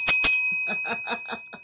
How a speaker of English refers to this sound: Yay, I get to ring my bell.